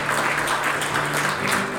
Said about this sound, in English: So one more time, give God a round of applause.